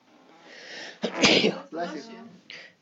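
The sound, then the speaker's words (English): A breathy intake builds into one loud, sharp sneeze, followed by a brief vocal sound and a faint exhale. “Bless you.”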